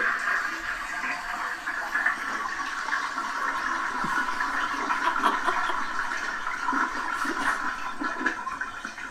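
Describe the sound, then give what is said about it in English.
A toilet flush sound effect: a toilet flushes in one long, steady rush of water, loud, with gurgling swirls throughout and no voices. “It's called Toilet and then Toilet Emoji Flush Sound Effect.”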